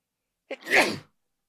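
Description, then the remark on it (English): A single sneeze: a short sharp intake followed by a loud, breathy burst lasting about half a second, then silence. “Hang on, I'm going to sneeze.”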